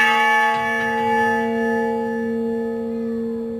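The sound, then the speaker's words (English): A large memorial bell, the Honor Bell, tolls for veterans' burials at Fort Logan Cemetery in Denver, its deep, resonant tone lingering and slowly fading after the strike. It sounds full, with no voices present. “Tell me more about what motivated you to build the Honor Bell.”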